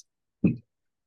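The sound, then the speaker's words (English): A single short clatter of dice tumbling onto a surface as they are rolled to resolve a pistol shot in a game, lasting only a moment amid otherwise quiet surroundings, with no voices present. “Come on, dice.”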